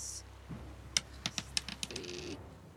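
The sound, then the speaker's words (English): Dice, rolled for a second attack in a tabletop game, clatter across a tabletop in a quick run of sharp, hard clicks that bounce and settle within about a second, moderately loud, with no talking. “I'm going to roll my second attack on as well, just see if it does.”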